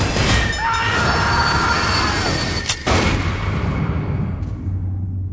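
A train rolls along the rails with a loud, continuous rumble and clatter, a thin metallic wheel squeal rising briefly early on and a sharp jolt near the middle. No one speaks.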